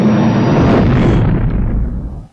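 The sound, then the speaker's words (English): A teleport sound effect: a loud, dense whooshing boom with heavy low rumble, its bright hiss gradually dulling and fading out over about two seconds, with no voices. “What sounds just like a teleport?”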